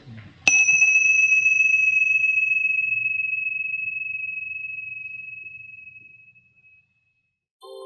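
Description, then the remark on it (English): A single bell is struck once, clear, its bright high tone ringing out and slowly fading over about six seconds against a faint low hum, with no talking; the bell is rung to close the session. “Why don't you ring your bells to stop your attendant display?”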